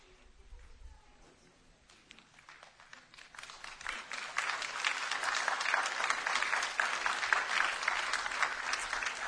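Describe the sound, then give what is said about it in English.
A crowd claps for fathers on Father's Day, starting as scattered soft claps and swelling into steady, dense applause that holds for several seconds at moderate loudness. “I didn't even have to tell you to clap, but that wasn't a great clap.”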